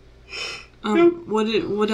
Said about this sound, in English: We're just gonna have a yawn. Oops.